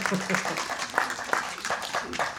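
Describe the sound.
Scattered audience clapping at a talk, in answer to a question of how many think they could be extraterrestrials: a steady patter of many hands with some sharper individual claps standing out, and faint murmuring voices underneath.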